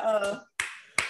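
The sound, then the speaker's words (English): A brief voiced sound, then two sharp hand claps spaced about half a second apart, each a crisp, loud slap with a quick fading tail. “I'm not going to be able to do that, but I could clap you some.”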